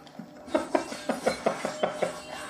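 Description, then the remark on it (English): Terracotta pots being clawed and smashed, leaving claw marks on the wall: about eight sharp, clattering ceramic hits in quick, uneven succession, fairly crisp, with no voices. “So I've just clawed a couple of pots, because like I said, I'm a massive pot addict.”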